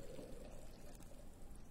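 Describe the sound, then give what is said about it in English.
Water pours steadily into a baptismal font during a baptism, a continuous splashing rush that stays even for a couple of seconds, with no voices over it. “Send your Spirit to move over this water, that it may be a fountain of deliverance and rebirth.”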